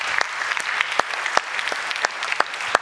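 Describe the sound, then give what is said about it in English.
An audience claps steadily, a dense wash of many hands with a few sharper individual claps standing out at irregular moments, moderately loud and with no voices over it. “Give them a little clap, you know.”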